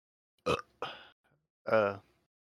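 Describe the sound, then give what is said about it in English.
A loud burp: two short guttural gulps followed by a longer, throaty belch that rumbles for a moment before cutting off into silence. “You're such a mess. You're like burping, yawning.”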